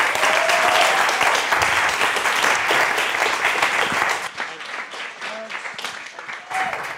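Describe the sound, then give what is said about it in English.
A crowd at a Long Now event in the Long Now bar applauds loudly for Bruce Sterling, dense clapping filling the room for about four seconds before thinning into scattered claps and faint cheers that fade out near the end. “And with that, let's get some futuring going on. A big round of applause for Bruce Sterling.”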